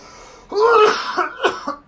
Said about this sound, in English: And it's not official until one of us starts coughing. For real. I'm pretty sure after I hit this, I'm going to start coughing.